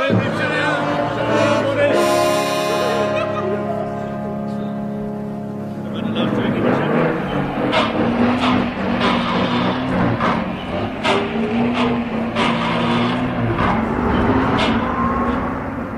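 A heavy diesel engine rumbles and revs with a droning, harmonic tone, then shifts into a rougher, clattering roar as the vehicle pulls away, staying loud throughout.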